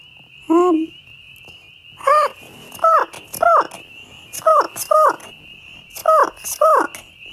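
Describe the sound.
A voice imitates an albatross with about eight loud, nasal squawks, one alone and then the rest in quick pairs, each a short rising-and-falling honk, with no other talking.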